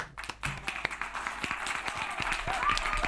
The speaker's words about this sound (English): Honestly, where's the applause? Where's the applause button?